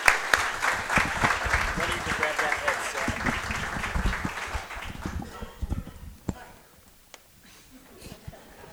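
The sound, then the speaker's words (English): Audience applause for two athletes being introduced, one a state champion and State Player of the Year, a dense crackle of many hands clapping at steady loudness for about five seconds, then thinning into a few scattered claps and fading out. “So how about a round of applause for those two?”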